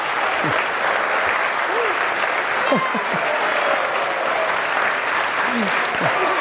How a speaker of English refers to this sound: You do clap.